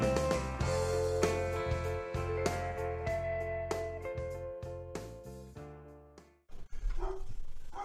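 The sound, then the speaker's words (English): Music plays and then cuts off, followed by a short burst of loud, excited barking from several pet dogs, quick yaps. “Hold on a minute, my dogs are going nuts for some reason, which makes me think somebody tried to walk into the house.”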